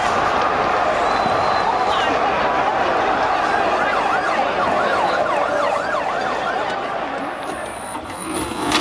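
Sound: emergency vehicle siren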